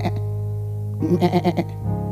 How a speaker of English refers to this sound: the lost sheep was lost, but he did not lose his bleat